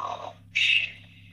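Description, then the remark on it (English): A voice imitates a man's snore: a brief low groan followed by a single loud, harsh, raspy snort that trails off, with a faint steady hum underneath and no talking. “This man Andy was snoring. He went.”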